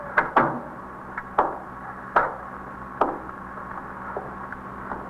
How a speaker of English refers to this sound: Should I close the door? Yes, please.